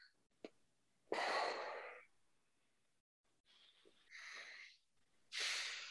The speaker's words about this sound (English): Inhale, hold, squeeze. Coming back to normal, breathing in through the nose and out through the nose.